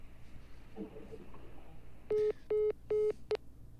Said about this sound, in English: His phone's ringing off the hook. Yeah. All of a sudden.